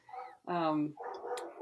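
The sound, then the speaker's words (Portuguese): A dog gives one loud, drawn-out bark, surrounded by shorter, quieter vocal sounds just before and after it. “O cachorro está barcando, não sei.”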